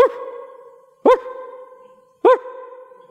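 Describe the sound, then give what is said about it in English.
A yellow Labrador dog barks three times at a steady pace, roughly a second apart, each sharp loud bark trailing off into a long ringing echo, with no voices present. “He'll bark the whole time. And it's a consistent every 3 second bark.”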